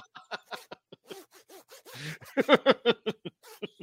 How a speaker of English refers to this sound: Imagine your zipper in your pants was that long.